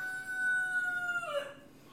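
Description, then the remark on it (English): A single rooster crows in one long, drawn-out call that bends downward at the end, moderately loud, with no one talking over it. “And the chicken that is going off. It's a rooster.”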